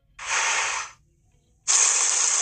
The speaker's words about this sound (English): That is the sizzle of a Wagyu beef patty, freshly ground to order by a robot, which mm-hmm. kicks into action as soon as orders are placed. Mm-hmm. This patty was ground just 2 minutes ago.